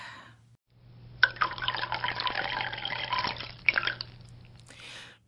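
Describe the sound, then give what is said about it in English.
Coffee pours into a cup in a steady, splashy stream for about two and a half seconds, ending in a few quick trickles and drips over a low, constant hum. “I forgot to fill my coffee cup. I need to sip when I write.”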